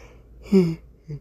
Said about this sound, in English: Excuse me. It's currently like 10:39 right now. Excuse me for the yawning.